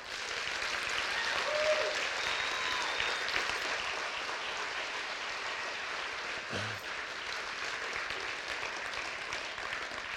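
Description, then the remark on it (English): Sustained, slightly late audience applause during a sermon, a dense steady wash of many hands clapping that stays fairly even in loudness for the full ten seconds, with no voices standing out above it. “So that, thank you for the late clap.”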